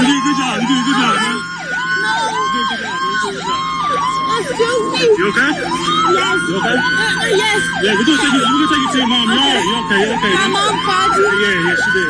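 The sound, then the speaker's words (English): Several police car sirens wail and yelp together at once, loud, as officers rescue a 9-year-old boy found with the Find My iPhone app after the family vehicle was stolen with him inside. Their rising and falling tones overlap in a steady, continuous cycle throughout. “Listen to all those sirens.”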